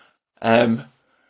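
A single short, voiced yawn, a breathy, tonal exhale lasting about half a second, fairly loud and on its own with no talking around it.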